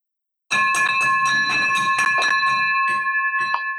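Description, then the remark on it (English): A victory bell rings rapidly and continuously to celebrate a closed deal, a bright metallic clanging with a sustained shimmering ring, loud, clattering for a few seconds before slowing at the end. “There, my friend, is the victory bell that you have been waiting for now almost a year.”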